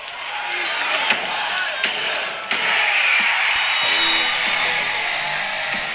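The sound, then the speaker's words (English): A wrestling theme song rises out of a dense, hissing crowd roar, punctuated by three sharp slam-like hits before faint low musical tones join in the second half. No one speaks. “This song ruined kayfabe for me because I just assumed it was always the crowd saying 1, 2, 3, but it was built into the damn song, so that was kind of a little bit of a bummer.”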